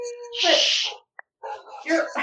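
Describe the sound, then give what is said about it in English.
Upset dogs make two loud, breathy huffing bursts, separated by a short pause, with a thin whine at the very start. “Sorry, I didn't mean to upset the dogs.”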